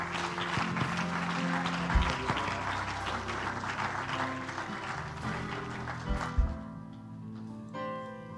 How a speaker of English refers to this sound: Clap your hands one more time to the Lord, would you?